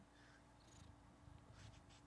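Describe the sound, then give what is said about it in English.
A domestic cat purrs in a soft, steady low rumble, with faint scratchy rustles flickering over it for about two seconds; no one speaks. “Did you hear my cat?”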